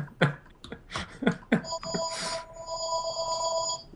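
A few short, sharp clatters give way to a telephone ringing, a steady electronic trill that starts partway through and keeps sounding, moderately loud.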